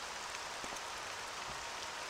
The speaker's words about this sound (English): So off we go to the lighthouse, listeners, on this rainy, rainy day. 6 p.m. it is. I'm walking through the rain to this muddy lighthouse in this beautiful game I love.